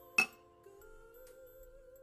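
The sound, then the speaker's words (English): A single bright clink of glasses touching in a last-call toast, sharp at the start with a brief ringing tail, followed by a steady, faint sustained tone. No one speaks. “Everybody grab your glasses. Your wine, your Hennessy, whatever you have.”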